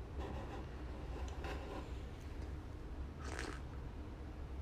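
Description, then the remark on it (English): Someone quietly sips hot coffee, with a few soft slurping and mouth noises and one louder slurp near the end, with no talking. “Let me take a sip of my coffee.”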